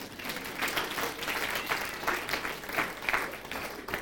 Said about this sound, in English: Great. We should give her a round of applause, don't you think?